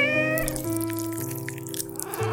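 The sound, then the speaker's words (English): A cat lets out a long, drawn-out meow that wavers in pitch, fairly loud, lasting a couple of seconds with no one speaking. “Her cats were already eating her by the time she was discovered. Never trust a cat.”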